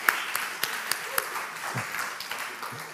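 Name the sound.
audience clapping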